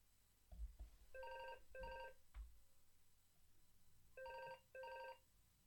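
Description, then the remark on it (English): A telephone rings in two short double bursts of bright electronic tone, separated by a pause, with a couple of dull low thumps early on and no talking. “The phone is ringing again.”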